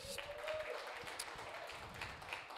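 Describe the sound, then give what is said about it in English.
An audience claps together in a steady, dense patter of many hands, soft, sustained throughout without any speech, applauding men about to share their testimonies at a worship service held in a barn. “So let's give them a hand clap.”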